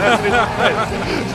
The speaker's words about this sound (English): This is in game. You hear the crowd. This shit is in game. It's not even a fucking cutscene.